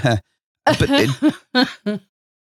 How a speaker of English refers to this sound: I'm so sorry. It made me cough then.